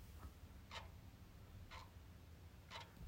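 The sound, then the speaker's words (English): A clock ticks steadily, one crisp tick about every second, close and fairly quiet over a low background hum, with no voices. “You know, if I put this close enough, you can hear the clock.”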